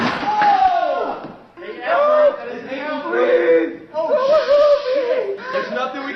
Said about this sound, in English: That would be my son breaking his ankle after, well, in the process of playing Edward 40 hands.